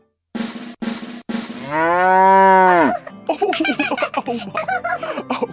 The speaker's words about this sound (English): Well, my goodness, we almost got it on the first try, but looks like that interrupting cow is roaming the neighborhood again.